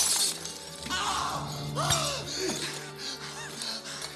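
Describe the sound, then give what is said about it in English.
Glass crunching and shattering under the feet of a man walking through it, in a dense, continuous spill of brittle cracks and tinkles, loud, with a few sharp breaks standing out amid the grinding shards. “Yeah, he's just gone crazy and he's walking through glass.”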